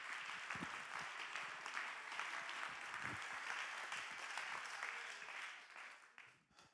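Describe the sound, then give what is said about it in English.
A large group claps steadily and enthusiastically in praise of God, a dense wash of overlapping handclaps that holds for several seconds before tapering off at the end. “Clap your hands and give him praise in this house.”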